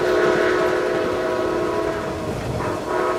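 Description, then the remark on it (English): A train running out of Busan rumbles steadily along the rails, its horn sounding a sustained, droning tone over the low mechanical roar throughout. It is fairly loud, with no voices. “Instead, he was running trains out of Busan.”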